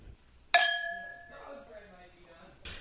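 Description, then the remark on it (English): A single bright clink of wine glasses touching in a toast, ringing with a clear, sustained tone that slowly fades as quiet voices begin talking underneath. “Join us every week in our long-standing tradition of drinking wine, talking about nothing, anything, and everything. With all that said, here's the clink.”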